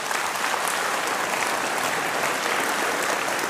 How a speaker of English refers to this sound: And so this year, across, again, all of our services and all of our times, we baptized over 200 people this year at the Vista. Yeah, we can clap for that.